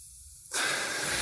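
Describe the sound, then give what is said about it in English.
After a brief near-silent moment, a deep inhale taken during a breathing prayer begins, a steady, airy rush of breath that holds strong to the end. No one speaks. “I want you to, as you take deep breaths, I just want you to inhale.”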